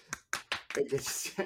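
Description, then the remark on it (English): Four sharp, dry hand claps in an uneven rhythm, a person clapping their hands at jokes, followed by a voice talking over the tail end. “Those were the keep sounds of my hands clapping at the really good jokes, not testicles tapping.”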